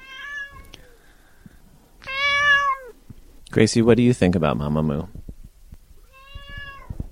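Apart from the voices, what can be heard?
cat meowing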